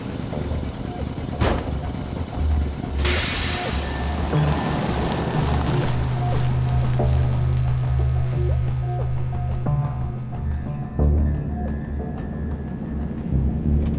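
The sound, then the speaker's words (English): A steady, rumbling engine drone runs throughout with a low humming tone and broad road noise, sounding like riding inside a truck while it drives, loud and continuous. “This truck actually drives pretty well.”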